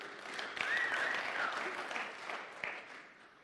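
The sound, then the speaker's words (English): A crowd applauds steadily, a dense wash of many hands clapping at once with a few sharper claps popping out, holding fairly even before easing slightly toward the end. “We just clap harder.”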